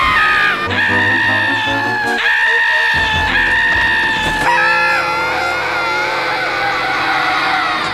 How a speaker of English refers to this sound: And Mr. Purdy's yells are so cowardly. Uh-huh. A shrill scream escapes his mouth, and it almost feels like they're sampling it and using it the same one a lot of the time. Like you could do a remix with it.